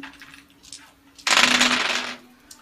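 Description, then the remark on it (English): A short, bright clatter of dice tumbling across a hard tabletop, fairly loud, rattling for under a second before settling, with faint background noise around it. “Dice.”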